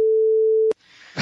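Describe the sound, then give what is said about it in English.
A single loud censor bleep, a steady mid-pitched tone held for under a second, cuts off abruptly and gives way to a faint hiss that swells into louder noise. “What the beep?”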